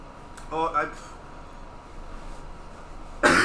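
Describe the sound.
A strained, choking gasp with harsh voiced bursts, then a quiet pause before a sudden loud, raspy cough bursts out at the end.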